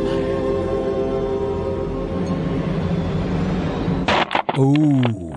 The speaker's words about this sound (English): I love this where he's trying to break the PlayStation 3 and he's not strong enough to do it. He had to run it over with his car.